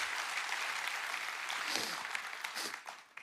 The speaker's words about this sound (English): And now in a spirit of thanksgiving, if you love the Lord, let's give him the highest praise. Come on. Oh, come on, somebody clap to Jesus because he's good to you.